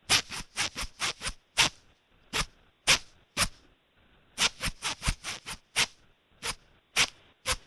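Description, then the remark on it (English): A zipper on trousers is yanked up and down in quick rhythmic bursts, close to the microphone, with short pauses between groups of rasping strokes, tapping out the beat of a hit song. “Put that microphone right there on your zipper. Zip that hit”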